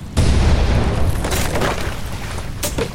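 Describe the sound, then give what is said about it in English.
A loud, deep explosion booms suddenly as a ship blows up in a bay, followed by a sustained rumbling roar and crackling debris blown high into the sky that lingers without fading. “The huge explosion briefly illuminated the entire bay.”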